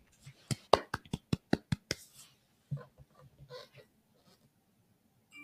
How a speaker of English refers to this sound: Let me see if I can find my clap. Tell me if y'all hear clap now, because I think it's letter C, and that's for y'all.